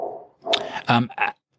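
A dog growls low and steadily, then breaks into a few loud barks in quick succession before going quiet.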